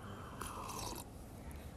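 food or drink, sipping coffee

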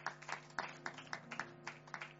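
crowd, audience clapping

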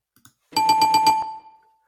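sound effect, bell ding sound effect

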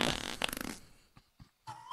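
sound effect, wet fart sound effect

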